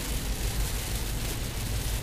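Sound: heavy rain coming down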